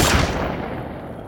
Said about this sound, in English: where a loud explosion bangs throughout the scrapyard.